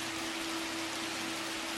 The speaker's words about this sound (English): It's pouring. But it's a warm rain. It's almost like a shower. You can smell the beautiful scent of this rain as it's getting everything in the room soaked.